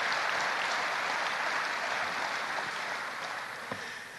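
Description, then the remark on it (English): An audience claps steadily partway through a talk, a dense wash of many hands that tapers slightly near the end, with no voices over it. “When there's a little bit of applause partway through the talk, that's hope.”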